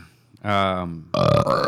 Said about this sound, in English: Belch.